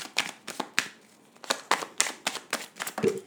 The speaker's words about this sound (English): Okay, enough shuffling, please.